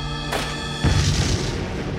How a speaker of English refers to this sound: A pipe bomb detonates in Don's hands. The force of the blast shatters the windows nearby.